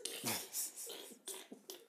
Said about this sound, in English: Hold on, I'm finna cough.